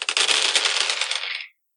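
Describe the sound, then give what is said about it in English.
A handful of dice, rolled for an insight check, clatter across a hard surface in a rapid burst of bright clicks, rattling for about a second and a half before coming to rest. “I roll a lot of dice for only getting 4 successes.”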